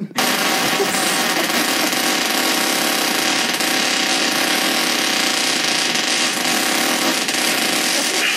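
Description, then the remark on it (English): A man's long, unbroken fart, over 40 seconds long, drones on loudly for the whole stretch, a coarse, buzzing rasp with a steady tone and only slight wavering in pressure as he breathes, no voices alongside. “We're 40 seconds into this fucking fart right now.”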